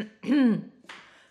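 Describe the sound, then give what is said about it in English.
A voiced throat-clearing rasp lasting about a third of a second, followed by a shorter breathy, cough-like burst after a brief pause. No one speaks. “Singing low helps you not cough.”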